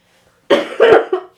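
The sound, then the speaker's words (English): A burst of harsh, choking coughs, three or four in quick succession, loud and raspy, from someone who swallowed something wrong and is clearing their airway, with no talking. “Sorry, I swallowed some of that.”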